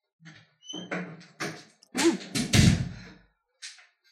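A door slams in a house with a heavy, booming thud amid a short burst of bumps and knocks, followed by a quieter knock a moment later.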